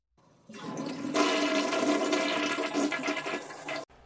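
A toilet flushes in one continuous rushing surge of water, building quickly, holding loud and broad for a few seconds, then cutting off abruptly. No one speaks.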